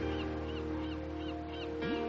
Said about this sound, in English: That is the stock sound of a seagull.